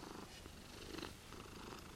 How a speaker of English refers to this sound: Think it can pick up Tatty purring?